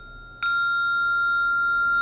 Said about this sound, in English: Now I will use the bell and I will just hit the bell gently.